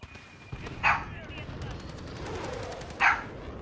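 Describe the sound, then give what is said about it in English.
A dog named Sparky barks twice, two sharp barks spaced about two seconds apart, over a steady low background murmur. “A dog?”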